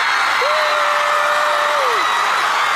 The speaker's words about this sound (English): The crowd goes crazy.